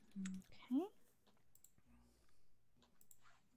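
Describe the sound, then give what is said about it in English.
Several light, quiet button clicks scattered across a few seconds as people hit the recall and shuffle button on their screens, mixed with brief electronic chirps and soft background murmuring. “So can I get you guys to hit the recall and shuffle button on your screens?”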